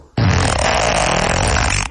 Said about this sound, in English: I mean, two people were almost killed by that fart. I mean, just that was a narrow, narrow miss.